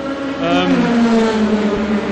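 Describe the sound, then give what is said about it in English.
A very old Aston Martin car engine rumbles loudly, its steady, throaty drone rising slightly in pitch as it passes, heard for a couple of seconds. “A very old, well, we've just been talking about Aston Martins, and this is a very elderly Aston Martin.”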